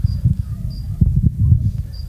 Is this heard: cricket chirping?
yes